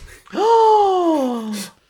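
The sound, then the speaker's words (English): A single loud gasp that opens into a drawn-out voiced 'oh', sliding steadily downward in pitch for over a second before cutting off, with no other sounds around it. “There's like an audible gasp and like a small...”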